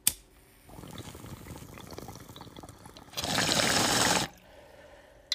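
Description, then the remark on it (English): Bong water bubbling steadily for a few seconds as someone hits a bowl, then a louder, rushing burst of bubbling and air before it cuts off. No one talks. “So let's hit this bowl.”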